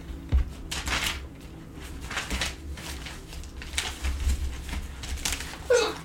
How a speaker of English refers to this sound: Bless you. Bless you, man. Gesundheit.